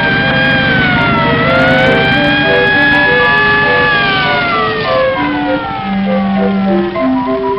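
A loud police motorcycle siren wails continuously as it follows a car, its pitch sweeping slowly up and down over a steady engine rumble, with no voices present.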